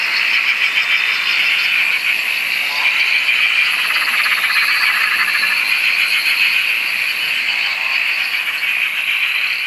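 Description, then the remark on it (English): A dense, continuous chorus of countless frogs at a dam on the Dorrigo Plateau in New South Wales, loud, with overlapping rattling, trilling calls forming an unbroken wall of sound throughout. “where her sister's dam is home to billions. It sounds like billions anyway. Billions of frogs.”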